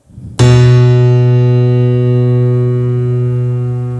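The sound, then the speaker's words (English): A single keyboard note is struck after a brief low rumble and held with the sustain pedal, ringing on with a steady, rich harmonic tone that fades very slowly over several seconds. “I'll push the sustain pedal.”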